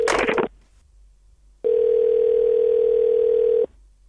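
A telephone ringback tone on an outgoing call to the Bald Knob Police Department: one steady, buzzy two-second ring that stops abruptly, preceded by a short harsh burst of noise and a brief quiet gap.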